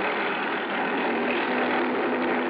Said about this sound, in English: A dinghy with an outboard motor came over from the boat.